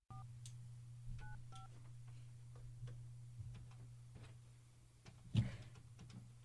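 A few short telephone keypad tones beep near the start, then a steady low line hum with faint ticking clicks runs on, broken by a single louder knock toward the end.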